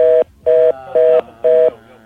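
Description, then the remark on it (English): A glitching telephone dial tone cuts in and out, sounding as four loud, evenly spaced beeps in quick rhythm, with no voices present. “Okay, why are the phones bugging out now?”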